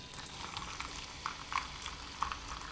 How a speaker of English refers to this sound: So without further ado, let's pour some calming chamomile tea.